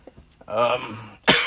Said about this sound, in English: sorry, I'm still got the cough. Yeah. We might have, like, a few coughing fits on there.